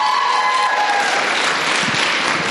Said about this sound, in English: If you like …, give me a round of applause.